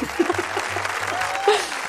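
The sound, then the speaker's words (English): A crowd applauds steadily, with dense, even clapping throughout, and faint voices calling out underneath the noise. “Can we put some applause here, please?”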